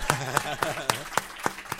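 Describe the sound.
A short burst of applause for the speaker's wife: sharp, evenly spaced claps, about seven in under two seconds, in a steady rhythm over faint murmuring voices.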